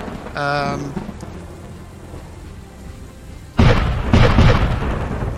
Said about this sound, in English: You hear the cannons fire. You look across and you see one of the cannonball hits connects with the mast of the other ship.